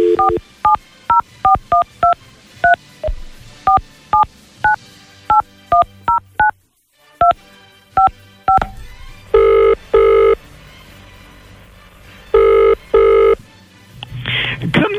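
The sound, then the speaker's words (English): A rapid series of telephone keypad beeps as a number is dialed to call the Queen, followed by several long, loud ringing tones on the line, with no one speaking. “So let's see if we can get her on the phone,”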